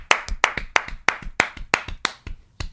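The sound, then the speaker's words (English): Sharp, hollow clacks of two people clapping a round of applause with plastic pincher claws, in a quick steady rhythm, about nine main hits, with lighter clacks from the second clapper falling between them. No voices. “Just the sound of two plastic claws hitting each other.”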